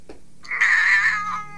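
A single drawn-out cat meow, rising and wavering with a plaintive, crying tone, fairly loud with no one talking.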